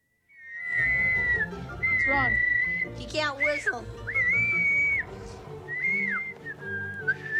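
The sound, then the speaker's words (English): People in the grass try to whistle: someone whistles a string of sustained notes, some steady and some wobbly or sliding, with short breaks between attempts, over a low background hum and faint voices. “So they get into the grass, and they're all trying to whistle, and … can't whistle.”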